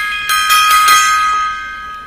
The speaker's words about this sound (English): Gong time there.